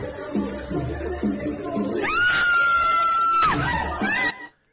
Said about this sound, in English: She always screamed like she was upset.